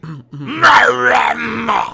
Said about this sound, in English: It's like a primer. Everyone, clear your throat.